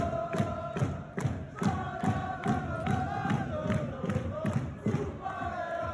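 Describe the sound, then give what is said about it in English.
A large hockey arena crowd chants loudly while jumping and clapping in a steady, driving rhythm after an icing in the second period, heavy thuds landing about twice a second under the sustained roar of voices. “You know what that whole, like, what everyone was jumping, clapping about there?”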